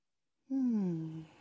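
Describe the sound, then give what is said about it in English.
A single deep, voiced exhale during a breathing exercise, a sighing breath that starts strong and slides downward in pitch over about a second, with silence before it and no talking. “Breathing all the way out, S's through the perineum, through the floor, into the earth, give it over.”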